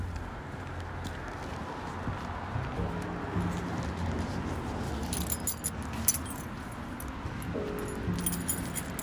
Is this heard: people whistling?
no